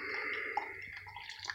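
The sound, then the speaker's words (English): A coffee maker drips and gurgles softly, a steady watery hiss with small irregular drops and bubbles, quiet, with no voices. “Coffee making drip.”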